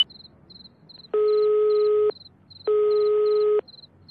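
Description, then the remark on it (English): A telephone ringing tone heard over the line while calling a Towin number that nobody answers: two long, steady electronic tones, each about a second, separated by a short pause, with faint high chirping in the background. “I'm calling. Let's see. It's ringing. Nobody's answering.”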